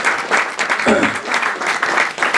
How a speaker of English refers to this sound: Clap it up for …. One time.